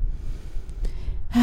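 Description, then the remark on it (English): A soft breath drawn in and let out through the nose during a breathing exercise, airy and unhurried, with a brief rush of air at the end and no talking. “Start breathing all your inhales and exhales through your nose. Inhale, exhale.”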